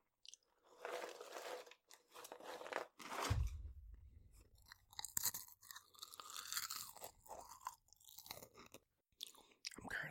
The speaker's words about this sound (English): But if you ever get to this part while editing, this is going to be the ASMR part. Or mukbang, or whatever it is. So, let's now proceed with some chewing.